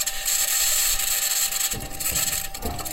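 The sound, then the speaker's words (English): A Mars rover drives over rough ground, its wheels grinding with a steady scratching over a constant high whine from its electronics, broken by a few low clunks and bangs from the suspension system. “You notice that weird scratching noise? The bangs and clunks are from the suspension system.”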